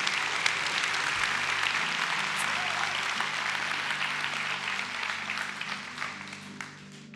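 loud audience applause

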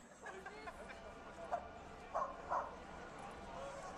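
dogs barking

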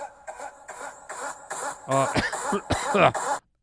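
cough

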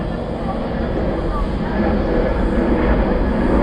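airplane flying overhead

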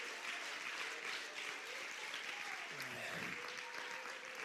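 audience clapping hands

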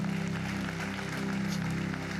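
audience clapping hands

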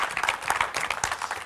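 audience hand clapping

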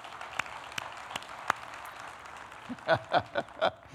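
audience clapping and applause

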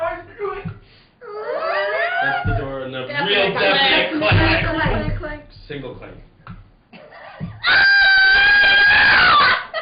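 woman screaming

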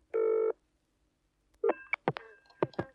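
telephone dialing and ringing

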